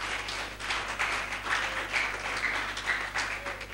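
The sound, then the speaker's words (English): A crowd applauds steadily for the children's teachers, many hands clapping together in a dense, sustained patter for several seconds at a fairly even loudness. “And I'd like to appreciate all the children teacher for a job well done. Let's clap for them.”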